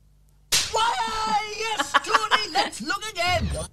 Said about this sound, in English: the big orange fella run in from the left, and he gives him a good old slapping.